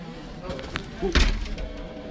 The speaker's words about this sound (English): And I shut that door a little too hard. I'm pretty sure I annoyed some people by mistake.